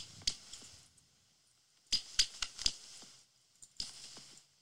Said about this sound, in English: Listen to it again. Squeaky toy. Yeah. Oh, my God. It's a little leather bone squeaky